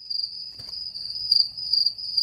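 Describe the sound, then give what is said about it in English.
A steady, high-pitched cricket chirp sound effect trills continuously through the whole stretch, with a brief soft knock near the start and faint low rumble underneath; no one speaks. “Hit the crickets.”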